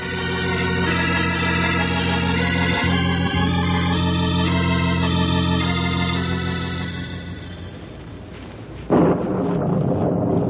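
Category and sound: nature, thunderstorm with rolling thunder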